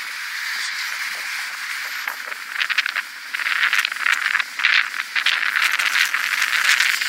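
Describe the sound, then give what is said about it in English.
A loud truck rattles and clatters as it drives by during a walk, a harsh, jangling mechanical noise that builds in strength over several seconds and stays steady without any voices. “Hear that loud truck right there?”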